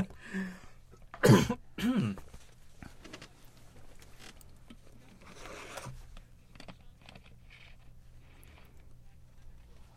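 Two sharp, loud coughs at the start, followed by quieter rustling and faint shuffling sounds against a low background hum.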